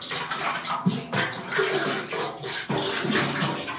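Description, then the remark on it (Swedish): Liquid pours steadily into water, a continuous splashing and gurgling stream with slight surges, lasting the whole stretch with no voices. “Nej, det var så jävla upplevelse att hälla ut det där alltså.”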